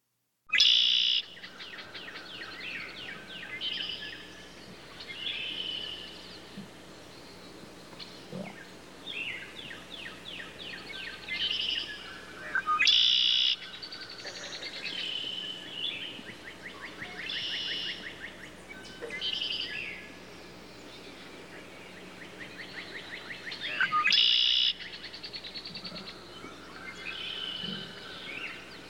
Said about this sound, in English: I'd forgotten how much their song, the soundtrack of my childhood, fills my heart. I don't have any advertisers, so instead I'm treating you to a minute of birdsong.